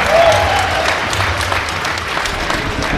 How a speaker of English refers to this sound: We want to thank you folks so much for coming out. Stay close. We've got a sold out crowd here. Yeah, give yourself a hand.